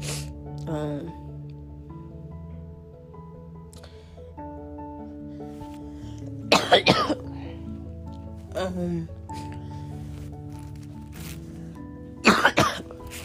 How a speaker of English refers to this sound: Anyway, you guys, I'm going to wrap this up because I cannot stop coughing.